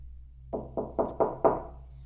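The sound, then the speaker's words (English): Five firm knocks on a wooden door in an even, steady rhythm, fairly loud, with a low hum underneath and no voices. “Knock, knock! Who's there in the other devil's name?”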